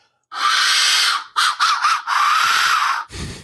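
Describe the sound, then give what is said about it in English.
A full-size skull-shaped resin death whistle, made by a maker in Arizona, is blown in harsh, rasping shrieks: one long scream, three quick choppy bursts, then another sustained wail, ending with a low thud. “they found out about the death whistles because they were considering using them for one of the tribes”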